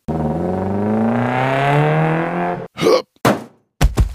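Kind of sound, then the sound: vehicle, car accelerating hard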